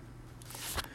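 A single short sneeze, a breathy burst that builds briefly and cuts off sharply, against a quiet background hum.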